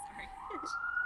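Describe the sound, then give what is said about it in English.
An emergency vehicle siren wails through a city street, a steady high tone sliding slowly upward, clear, with faint voices murmuring underneath. “No, I was just saying we'll let the siren pass.”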